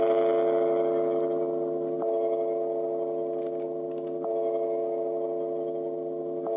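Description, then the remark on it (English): A reconstructed E-flat bronze bell tone, a close approximation of the original sound of the Liberty Bell, hums steadily with layered overtones, struck again roughly every two seconds for three strikes, loud and sustained with no one speaking. “This is probably what the Liberty Bell sounded like.”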